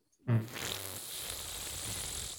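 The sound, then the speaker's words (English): A chair creaks, opening with a short low groan that quickly turns into a steady, raspy grinding lasting about two seconds, with no voices over it. “I can't wait for you to hear the sound of your chair. It did it again.”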